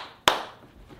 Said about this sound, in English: If you're the imposter and you know it, clap your hands.